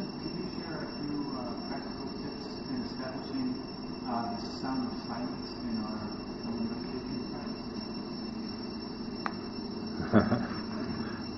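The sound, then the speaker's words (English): Cicadas drone in a steady, high-pitched buzz that holds unbroken for the whole stretch, over a low rumbling background, with a brief louder knock near the end. “Well, I mean, it's like right now, you can just listen to the sound of the cicadas, and then to open the sense of opening wide.”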